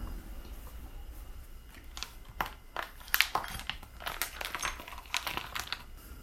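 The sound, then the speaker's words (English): Lamb meat sizzling in a skillet: an irregular crackle of sharp, hissy pops over a steady low background, growing busier and denser toward the end. No one speaks. “You can hear it starting to sizzle already, which means my heat might be up a little high, actually.”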